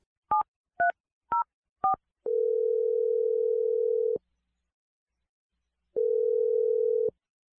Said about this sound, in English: I'm going to dial her dad's phone number and let you make your Awkward Tuesday phone call. Here we go.